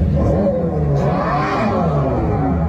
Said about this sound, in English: It still don't sound quiet. It doesn't quite sound quite, right. No. It sounds like a revving of a car through a speaker. It does. It does. absolutely, which is what it's doing.